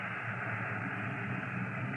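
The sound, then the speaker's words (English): A steady, continuous hiss of air escaping from a tire valve screwed open on a police squad car holds at an even level for a couple of seconds, fairly loud, with no voices over it. “Screw the tire valve open on the squad car.”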